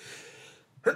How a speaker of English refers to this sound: Bless you. Excuse me. Sorry about that.